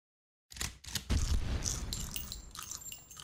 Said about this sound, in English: That popcorn he likes. I love that shit. That crunchy stale popcorn. You heard him crunching it.